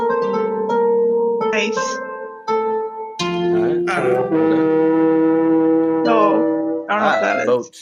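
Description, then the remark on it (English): A deep, droning Viking war horn sound effect blares in long sustained blasts, holding a steady low pitch, loud throughout, with people's voices breaking in over it. “A boat horn. It's a war horn.”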